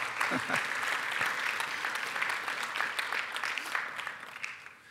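An audience claps steadily in a dense, crackling round of applause that holds strong for several seconds, with a brief vocal murmur early on, before gently tapering toward the end.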